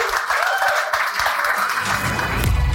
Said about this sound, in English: Round of applause for Colin and Ryan.